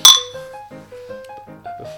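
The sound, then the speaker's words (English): Beer glasses clink together in a toast: one bright, sharp clink followed by several lighter taps, each leaving a clear ringing tone, with no talking. “Cheers!”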